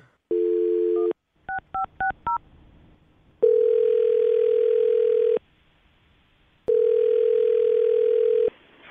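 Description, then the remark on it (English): A steady telephone dial tone, then a quick run of keypad beeps, followed by two long ringing tones separated by a pause, heard clearly over a line with no one talking. “All right, you ready to make the phone call?”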